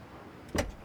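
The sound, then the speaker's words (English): A single short, solid clunk of a car door as a man gets the door for a woman at her car. It is brief and rises out of a quiet background with no voices. “Let me get the door for you.”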